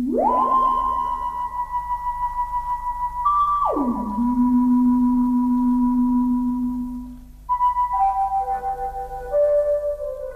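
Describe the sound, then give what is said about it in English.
Electronic tones from a manually operated wobulator sweep up and down in smooth glides, settling on sustained pitches, then break into a run of short stepped notes. The swoops and individual notes are cut together, overlaid, and put through delay and echo, giving a rhythmic echo over a low steady hum. “Then there's the melody sound, which is all the manually operated swoops and individual notes off the wobulator cut together, and there's a couple of different elements overlaid here and put through delay and echo to glue it all together.”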